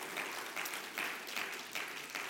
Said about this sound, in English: Holy, holy, holy is the Lord of hosts. The whole earth is full of his glory. Give him one more hand clap of praise today. Amen.